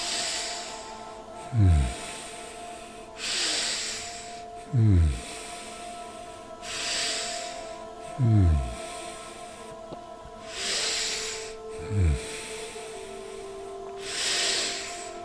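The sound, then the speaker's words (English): Slow, deep breathing in a steady rhythm, about four full cycles. Each breath has a low, throaty intake followed by a long, airy rush of exhaled air over a faint steady hum. “Make sure you hear the air flowing.”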